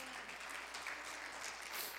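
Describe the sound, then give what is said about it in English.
A crowd at a worship service claps their hands unto the Lord in a steady, dense wash of applause that holds evenly for the full two seconds, with no voices standing out above it. “Oh, somebody ought to clap your hands unto the Lord.”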